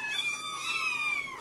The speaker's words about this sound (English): Ah, I can't concentrate on my important work with all these cats meowing.